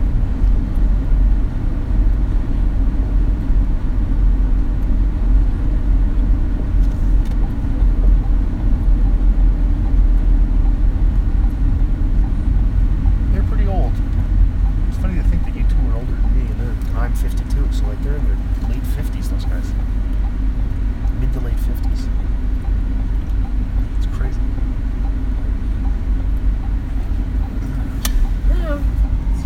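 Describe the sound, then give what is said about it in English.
A car engine and road noise make a steady, loud, low rumble that runs unbroken the whole time, with faint scattered clicks and murmured voices on top. “I'm driving and I'm not all there.”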